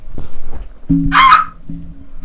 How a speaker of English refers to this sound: Okay. That's a bird. Oh, God. Sound like a that fucking pterodactyl.